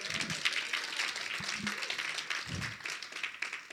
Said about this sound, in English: Come on, you can clap. Come on.